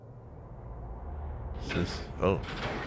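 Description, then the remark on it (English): A door creaks open with two drawn-out groaning squeaks in the second half, rising over a steady low rumble that fills the background. “That is the loudest door in history.”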